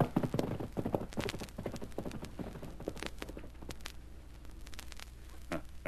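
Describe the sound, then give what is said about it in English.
Horse hooves clip-clop in a quick, uneven rhythm as the horse is ridden, with sharp clattering strikes over a low steady hum and no talking. “I'm riding your horse and taking your place.”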